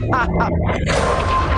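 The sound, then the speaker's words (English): A loud cinematic explosion from a movie bursts after a moment of muffled voices, its deep rumble and wide roaring wash sustaining heavy to the end. “God, that explosion.”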